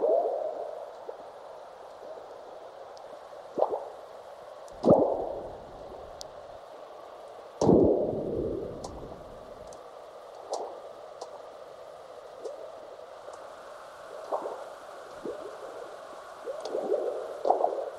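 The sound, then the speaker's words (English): Sped-up earthquake recordings from seismic recording stations in North America and Central Asia, from an artist's soundscape for an album: deep, frog-like burps and thuds, the biggest around the middle, each trailed by scattered high, brief chirps of aftershocks over a steady hiss, with no voices. “Frog-like burps you can hear are earthquakes, large ones followed by the chirps of aftershocks.”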